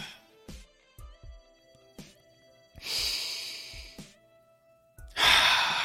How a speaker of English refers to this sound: Breathing is such a beautiful thing. It really is.